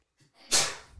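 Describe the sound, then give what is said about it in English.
A single sharp sneeze bursts out, preceded by a brief breathy intake and trailing off in a hissy exhale, with no talking around it. “Bless you.”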